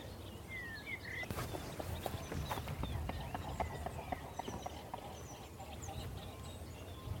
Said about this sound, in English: Swan taking off, I think. Can't see because there's a huge bramble pile between us and the water. It's an impressive beating of wings on the water.